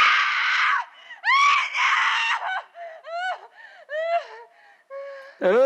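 A run of loud, shrill screams in quick succession, some long and strained, others short rising shrieks and gasping cries, with no talking.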